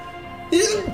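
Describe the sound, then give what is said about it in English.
A single forceful sneeze, a short voiced intake building up before an abrupt, loud, explosive burst at the very end. “Bless you. That was powerful.”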